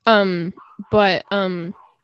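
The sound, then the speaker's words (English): A dog, excited because a family member just got home, barks three times in quick succession, loud, each bark drawn out and tonal with an excited, yelping quality, separated by brief pauses. “My brother just got home and my dog is really excited, so.”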